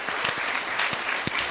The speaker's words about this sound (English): So as I say their names, could you give them a warm round of applause? Let's start with the Messiah College School of Humanities. Thank you.